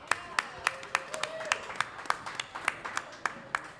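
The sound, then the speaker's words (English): Applause of steady, sharp handclaps landing about three times a second, sounding like a small group clapping for a singer about to perform, with no speech over it. “Y'all give her a round of applause.”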